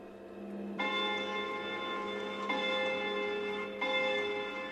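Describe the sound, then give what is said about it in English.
A clock chimes three times at uneven intervals as it stops, each resonant bell-like strike ringing out and overlapping the lingering hum of the previous one. No one speaks. “The clock stops with a lot of chiming, and with each chime, there is a cut.”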